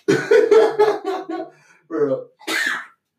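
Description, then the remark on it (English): A single sharp, hissy sneeze bursts out near the end, fairly loud, following a stretch of laughing, voiced sounds and a short breathy build-up. “Bless you.”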